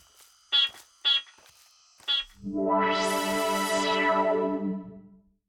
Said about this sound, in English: Let me beep for you. But I'm doing it because I want to. Great. Beep.